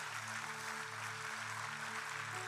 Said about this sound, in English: Come on, family, clap for everybody that said that.